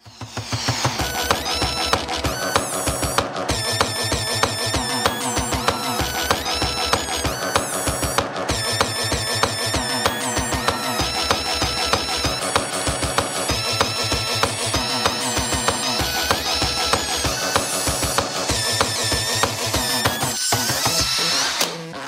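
A pop song cover by a YouTuber performed on whining dental drills and other dental equipment, their buzzing pitched tones shifting note to note in a steady rhythm, loud and continuous throughout with no voices.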